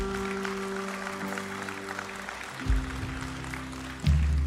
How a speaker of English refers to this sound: Come on, let's give God a hand clap.